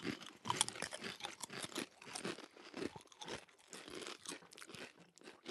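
crunching chips

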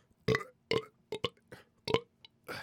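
burp

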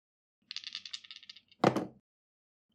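dice being rolled

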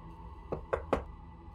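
knock

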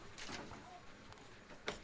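office door being closed

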